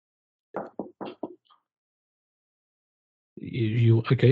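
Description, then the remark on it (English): Four quick knocks on an office door in a tight rhythm, followed by a few seconds of silence and then a high-pitched, squeaky voice answering from inside. “Knock on the door.”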